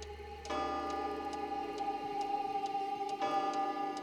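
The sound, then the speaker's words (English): A hallway clock ticks steadily while deep, resonant chime strikes ring out at midnight, one early and another about three seconds later, each tone lingering and overlapping the next. Fairly loud, with no voices. “I woke as the clock in the hallway chimed at midnight.”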